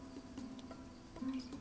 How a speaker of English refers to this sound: I was recording the cricket. Why? For later use.